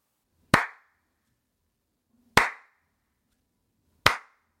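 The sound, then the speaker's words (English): Three sharp, loud hand claps spaced slowly and evenly about two seconds apart, each a crisp snap with a quick decay, with silence between and no voices. “I just have to start off with a slow clap for the little guy, because his amazing puns that he unleashed on Tim and the other guy in the show were just unbelievable.”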